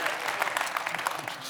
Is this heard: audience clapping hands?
yes